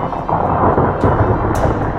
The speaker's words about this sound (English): The steady fall of rubble gives way to a great rush of rock that shatters the last load-bearing wall of the northern tower.